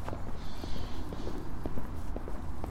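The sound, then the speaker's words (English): Faint, steady running footsteps of a passing jogger tap along at a regular pace, partly buried under a constant wash of outdoor background noise and traffic by a river, with no one speaking. “Listen to the run.”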